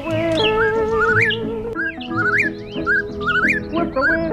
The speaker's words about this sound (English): The whippoorwill, Caprimulgus vociferus. Today's Talkin' Birds featured feathered friend.